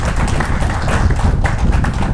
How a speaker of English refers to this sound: Can we give the Lord a hand clap of praise in this place?